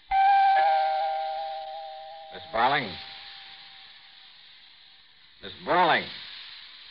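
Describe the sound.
The doorbell of the only apartment on a building's seventh floor rings with a single sustained, bright electric tone that fades over about two seconds, followed by two brief bursts of voice-like sound against a low hiss.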